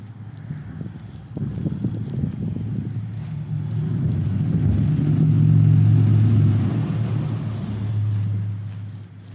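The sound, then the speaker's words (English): A steady low rumble of vehicles passing on a bridge overhead, including a truck playing music, swelling louder in the middle and easing off, with wind buffeting the microphone and no talking. “Yeah, there was a truck that went by with some music playing.”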